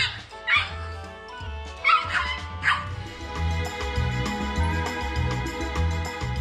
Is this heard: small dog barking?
yes